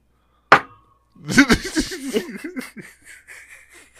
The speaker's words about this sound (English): Slamming like my fucking wax pen like it's a shot glass down.